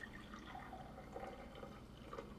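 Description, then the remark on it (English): Wine poured into a glass: a steady, soft stream of liquid with small gurgling, rising burbles, fairly quiet, lasting a couple of seconds with no one speaking. “Pouring some more wine.”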